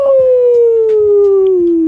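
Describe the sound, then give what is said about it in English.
A single sustained wolf howl, loud, holding one long tone that slowly slides downward in pitch with faint harmonics above, lasting the whole two seconds. “after every howl, we get a fart.”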